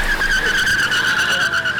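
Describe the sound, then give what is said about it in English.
Tires screech loudly and continuously as a car is pushed up to 88 miles an hour, the high, steady squeal of skidding rubber riding over a roaring engine for a couple of seconds. “Now, let me just get this thing up to 88 miles an hour.”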